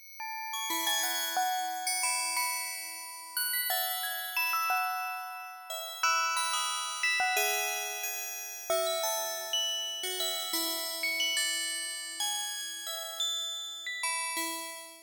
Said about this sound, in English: let's listen to a sample that you created called Randomized Bells.